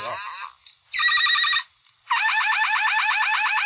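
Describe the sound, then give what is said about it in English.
A battery-powered Galvatron transforming robot toy from 1986, running on a 9-volt battery and with three sound settings, plays electronic sound effects: a short descending warble, then a buzzing multi-tone burst, then a loud, rapidly warbling siren-like tone. No one talks over it. “I bought audio aids, and I put a 9-volt in Galvatron here, and he has 3 settings, if you can believe it or not.”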